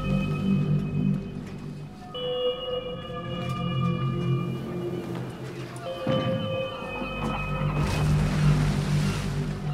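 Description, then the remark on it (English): Ocean waves wash and surge steadily at sea, swelling louder near the end, while long low tonal groans, like a ship's hull creaking, drift over the water. No one speaks. “Another beautiful day at sea.”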